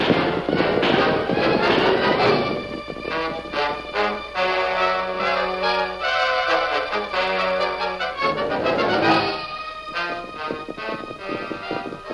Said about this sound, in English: Thundering in the night, the powerful horses carried the Lone Ranger, Jeff, and Tonto to a well-concealed camp in an arroyo